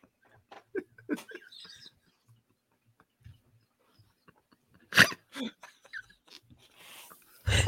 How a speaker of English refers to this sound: Oh, snortsky. Oh. That wasn't even me that snorted.